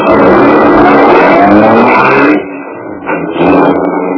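A loud car engine roars, revving steadily, then dips briefly before surging again as the car pulls away. No voices are heard.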